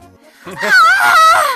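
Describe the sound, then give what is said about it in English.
A single voice lets out a drawn-out, high-pitched, wavering scream, loud, lasting about a second with no other sounds around it. It is a performed, acted scream of the character Purple in a Kirby story being read aloud. “Screamed Purple.”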